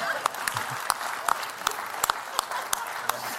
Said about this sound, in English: So now, as we end 2020, can we get a round of applause for that?